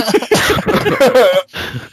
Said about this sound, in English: Can I cough now? Yes.